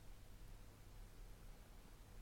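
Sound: audio drop-out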